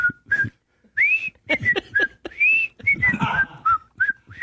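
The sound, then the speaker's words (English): Someone whistles a bouncy melody that sounds like the Andy Griffith Show, a run of short, clear notes with brief pauses and slides between pitches, with some breathy, rustling sound beneath. “Somebody's going to go, I heard on the Dan Patrick Show, they actually had whistling.”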